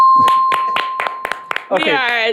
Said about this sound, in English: Give him a round of applause here. You won!